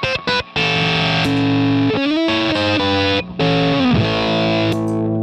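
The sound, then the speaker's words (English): Loud electric guitar through heavy distortion and an octave pedal, playing thick sustained notes with slides and pitch bends, broken by a few brief pauses, with no voices; the octave pedal boosts the signal when on, hitting everything harder. “Stays really present, even with the distortion.”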